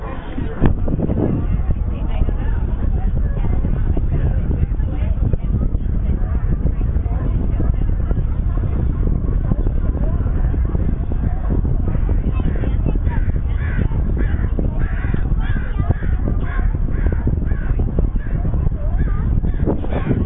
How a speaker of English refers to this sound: And out on another pier, there's some rocks at the end of the pier, a whole row of rocks, and let's listen to the seals that are just camped out there.